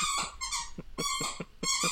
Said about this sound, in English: My dog, you can tell, also loves this movie. That's why she is squeaking aggressively in the background.